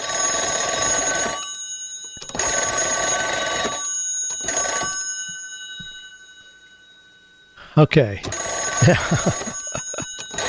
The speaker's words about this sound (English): So we don't hear telephones like that anymore.